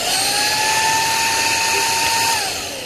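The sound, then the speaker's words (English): A Dyson vacuum cleaner roars loud, running near a microphone, its motor holding a steady high whine for a few seconds before the pitch and volume sag slightly at the end as it starts to wind down. “That was Jonathan having a vacuum near him.”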